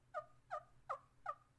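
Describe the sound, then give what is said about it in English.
Soft, contented hen yelps played on a turkey call that has an arc cut out of its side, worked with the thumb: five evenly spaced, two-toned yelps in a steady rhythm, fairly quiet, with a faint low hum underneath and no talking. “You want to get to that little contented hen yelp.”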